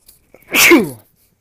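A single loud sneeze bursts out sharply and trails off with a falling, throaty tone, lasting about half a second with near silence around it and no talking.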